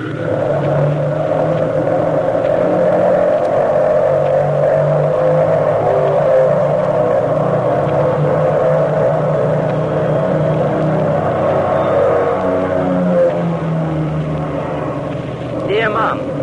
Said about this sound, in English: I am crew chief on a combat cargo plane. We just took off at 5:00. That's 5 o'clock sharp to you. This is our first mission of the day.